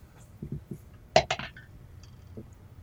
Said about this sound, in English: Ooh. And it fell. I'm going to roll again. The magic dice.